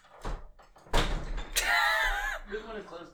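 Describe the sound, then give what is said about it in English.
A door thuds shut with a single solid slam, followed by a short squeaky, tonal rattle and faint movement noise. “He closed it whenever they started talking.”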